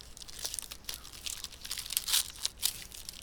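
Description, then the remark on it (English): A crinkly wrapper on a chocolate chip cookie is torn open, a burst of sharp plastic crackles and rustles with several louder rips scattered across a few seconds, no voices. “I opened it really stupidly, so it might sound like I'm milking it for, like, extra noise, but I didn't.”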